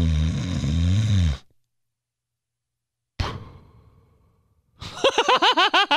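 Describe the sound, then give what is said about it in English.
A voice imitates a father's loud, rough snore for about a second, then silence, a sharp thump with a fading tail, and a burst of wavering, pulsing vocal sounds. “My dad invented his own snore. I swear to God, like it was just constant like normal snore, loud as shit.”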